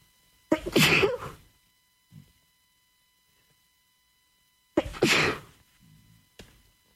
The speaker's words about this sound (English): Excuse me, sneezes never come in one.